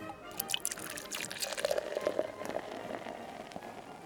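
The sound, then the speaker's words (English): Champagne pours into a glass with a steady liquid stream and fizzy crackle, fairly quiet, a few drips and bubbly pops scattered through the few seconds, no voices. “As you can see, today I'm enjoying some champagne.”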